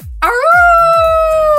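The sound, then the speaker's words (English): A person imitates a dog's howl, a single loud vocal tone that swoops upward and then holds steady and drawn-out to the end, with no talking alongside. “Go on, give us an owl.”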